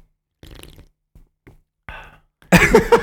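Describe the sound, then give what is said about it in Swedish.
Someone slurps an ice-cold Pepsi Max: a few short, soft sips, then one loud, long, noisy slurp at the end, with no talking. “Ska du sitta och sörpla nu? Ta en stund och uppskatta sörplet.”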